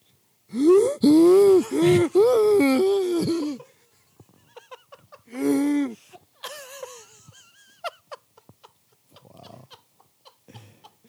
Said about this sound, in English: Oh, no. She's breathing. She's just hurt.